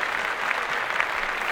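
A short burst of steady, dense applause, like a crowd clapping together. It is fairly loud, holds even for about a second and a half, and no one speaks over it.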